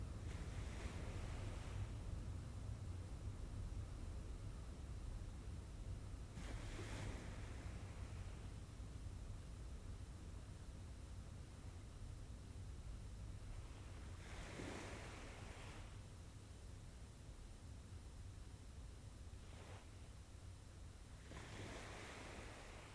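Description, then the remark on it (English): Gentle waves of crystal clear turquoise water wash onto a white sand beach and recede repeatedly, each soft surge rising over a steady low rumble of surf and wind, with no voices present. “and crystal clear turquoise waters, lapping against a white sand beach.”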